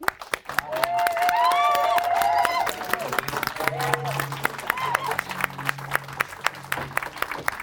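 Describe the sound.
A crowd breaks into sustained applause, dense clapping running steadily for several seconds, with a few voices whooping and cheering over it early on before the clapping continues alone.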